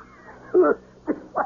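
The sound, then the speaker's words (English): Three short, throaty coughs: one longer hack, then two quicker bursts in succession, with no talking around them. “What is the word? Cough.”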